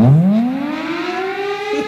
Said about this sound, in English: Sound the alarm in Minneapolis.